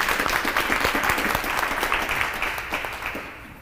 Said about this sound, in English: Deep. Very intelligent question. Clap for the young man. That's a deep question.